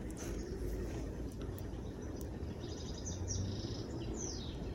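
Several faint bird chirps come in quick bursts toward the end, set against a steady low rumble like an engine or wind outdoors on a beautiful day after morning frost. No one speaks.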